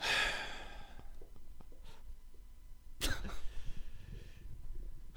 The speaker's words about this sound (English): Yeah, that may have caused a moment or two of laughter definitely, covered up by definitely a panic caused cough.